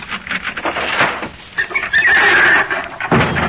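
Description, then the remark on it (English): A folding bed, which the maid calls Walter, collapses yet again: a rattling clatter, then a long, wavering high squeal of springs, ending in a heavy thump. No one speaks. “The maid calls it Walter because it's just like her husband, always falling down.”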